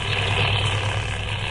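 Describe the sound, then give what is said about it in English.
A plane taxis down an airport runway for its takeoff, bound for Washington: a steady, droning engine rumble holds at an even, fairly loud level, with a deep low hum beneath a broad hiss. No voices are heard. “We said our goodbyes, watched the plane taxi down the runway for its takeoff.”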